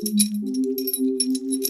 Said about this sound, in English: But what was strange was finding a present outside his door. He held it, and it made some jingling noises.